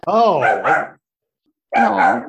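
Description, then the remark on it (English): A female puppy barks twice, loud, drawn-out yelping barks with a whiny tone, separated by a short pause and with no talking. “Puppy. Hold on. We're not gonna stop tape or anything, but I've got a dog.”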